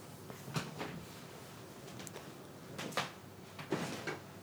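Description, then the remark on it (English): A drawer slides open amid a handful of scattered knocks and light clattering as tools are grabbed from underneath it, fairly quiet with brief pauses between. “But I guess he reaches underneath one of the drawers, grabs some tools and stuff, and says, "All right, boss, let's get to work."”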